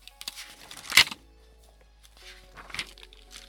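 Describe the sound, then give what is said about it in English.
Paper pages of a doodle-filled art notebook flap and rustle in a few quick bursts, the loudest a sharp papery slap near the start, held close to a microphone and fairly quiet, with no one talking. “I wonder if you can hear that. All the flapping of paper.”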